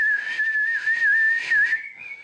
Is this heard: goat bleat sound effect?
no